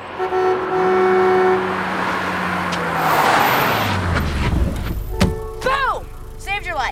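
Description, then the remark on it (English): A little European car's engine roars, humming and revving, with a short little European car horn beep sounding over it, followed by brief clipped voices near the end. “And I say roaring, but you know, it's like a little European car. And it does a little European car horn beep as Steph slides the car in front of him.”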